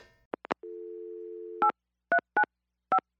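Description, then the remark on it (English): Telephone tones while calling up a voicemail message: a few quick clicks, a steady humming dial tone for about a second, then four short, loud keypad beeps at uneven intervals. No one speaks. “First up, though, here's his latest voicemail message.”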